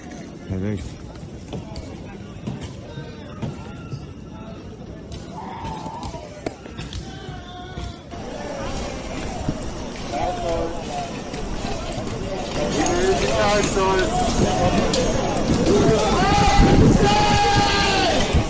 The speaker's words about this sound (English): I see a large crowd over here smashing the SUVs.